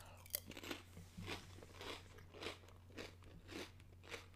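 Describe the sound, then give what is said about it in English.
Crunching of barbecue-flavored potato chips being chewed, a steady series of crisp, crackly bites roughly every half second, with a low hum underneath and no talking. “I apologize if you can hear me crunch.”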